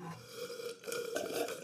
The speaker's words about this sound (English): You reckon a bit of ASMR beer sipping? No. Wait, all three of us. Ready? Ready?